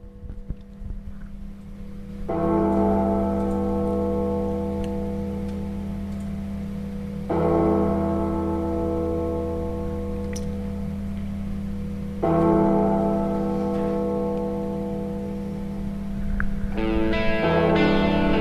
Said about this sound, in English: The bells, man. The bells.